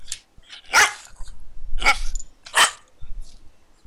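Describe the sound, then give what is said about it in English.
A dog barks three times, sharp loud woofs spaced about a second apart, with a faint low rumble between them. “What do you reckon, Inu? What was that? I can't hear you.”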